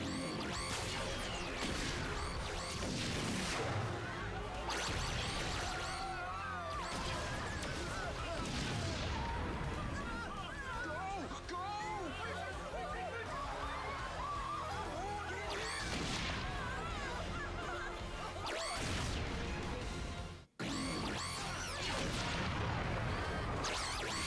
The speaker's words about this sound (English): They really like to run from big explosions in these costumes. Happened at the end of Megaforce, too.